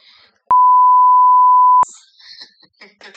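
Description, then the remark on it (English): A single steady ringback tone from an outgoing phone call to a man in San Francisco, one clear unbroken beep lasting over a second, then it cuts off and a brief muffled voice follows. “It's so weird that I was walking by the phone that I never have on me, ever, and I was getting ready to go and sit down, maybe lay down and go to sleep, and then my phone rang.”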